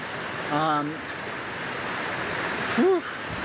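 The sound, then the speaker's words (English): A steady, dense roar of a powerful river waterfall fills the whole recording, unbroken, with two brief snatches of a voice rising over the rushing water. “So here we are, our first waterfall. It's been a rough day, and this waterfall is intense.”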